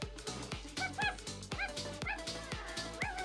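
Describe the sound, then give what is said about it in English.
A dog barks and yips in rapid, repeated bursts, high-pitched and excited, with a steady rhythm of sharp yaps and no one talking. “Oh, the car dog, right.”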